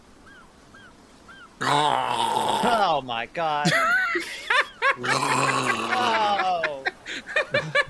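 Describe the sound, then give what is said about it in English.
A person imitates a menacing growl: loud, strained, raspy vocal bursts repeated several times, with a short spoken exclamation in between. “If they question you about it, growl at them or something. Can you growl?”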